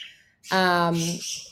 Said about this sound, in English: My birds are going crazy. Sorry. Oh, it's fine. There's both of them. Guys, if you're not watching this on YouTube, she literally has two freaking parakeets just flying around in the background.